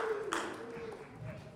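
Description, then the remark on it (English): Faint audience applause, a steady patter of many hands clapping with a brief sharper burst early on, and a low murmur of voices underneath. “So just one more round of applause.”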